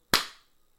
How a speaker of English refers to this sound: The thing is, even if it sounds off, it'll line up. It just matters that we did it. It just matters that it felt like we did it at the same time. It doesn't have to. Like, if you heard my clap and you're like, oh, it sounds off, it doesn't matter.